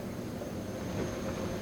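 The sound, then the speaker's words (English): A steady, low mechanical hum of a separate air conditioner's air handler serving a document and microfilm vault kept at a constant 56 degrees and 39% humidity, constant and unchanging throughout, with a faint high whine riding on top and no voices. “You will hear the separate air conditioner in here, separate air handler and unit for this room.”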